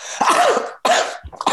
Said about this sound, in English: Sorry about that. For the people watching, I just burped up cars, people aren't listening.